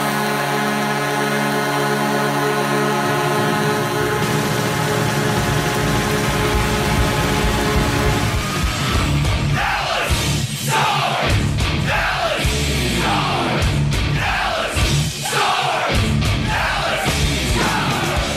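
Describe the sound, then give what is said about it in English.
Dallas's hockey goal horn, blasted for every goal, blares as one long, steady, deep tone for several seconds, then gives way to a roaring crowd yelling and cheering with sharp bursts of noise. “So they blast the horn for every goal.”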